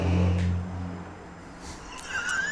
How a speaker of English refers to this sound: The trucks that go by and just create the noise. We are in front of the world-famous St. Louis Hill Cigar Company, St. Louis Landmark. If you've not been here, you need to be. And the traffic continues to be part of the show.